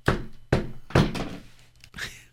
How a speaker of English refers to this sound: The next day they came to the monastery. They knocked on the monastery's heavy wooden doors.